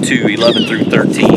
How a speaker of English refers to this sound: It's a little windy out here.